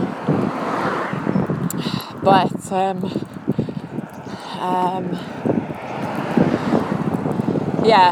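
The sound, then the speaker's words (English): Gusty wind buffets the microphone outdoors on a chilly, windy day at nearly 11 o'clock with the sun breaking through, a steady low rumble that swells and fades, with bird-like chirps and a person speaking briefly over the blustery noise. “But you can hear it's still windy.”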